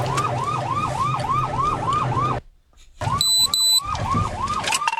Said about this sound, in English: We hear the sirens. We're all quiet.